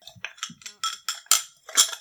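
Ice cubes clink in a glass of cold brew in a quick, irregular flurry of about nine bright, glassy taps over two seconds, with no voices.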